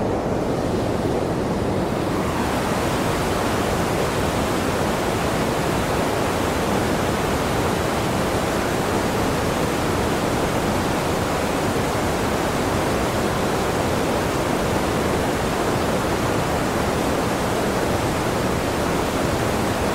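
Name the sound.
rushing waterfall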